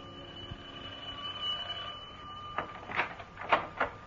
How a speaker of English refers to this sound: And then one day, the doorbell...